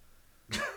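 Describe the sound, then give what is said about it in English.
A single sharp dog bark bursts out after a brief hush, fairly loud, with no one talking over it. “you could do the podcast where there's not a barking dog”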